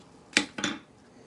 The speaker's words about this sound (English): So you just gotta let it. So you have to stir it and then just let it sit.